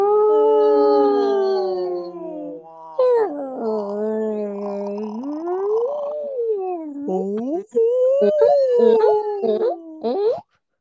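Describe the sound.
People imitate whale calls with long, wavering moans that slide up and down in pitch, overlapping almost continuously for about ten seconds, fairly loud.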